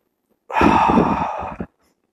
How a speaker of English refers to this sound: Oh, stop breathing on me.